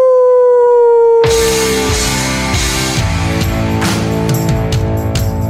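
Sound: howling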